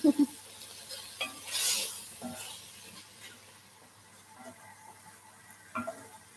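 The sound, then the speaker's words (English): Mince browns and sizzles steadily in an unwashed pot previously used for chicken stock while a utensil scrapes and stirs through it, with a few sharp clinks against the metal and a brief louder hiss of steam partway through. “I'm just cooking it in the pot that had the chicken stock”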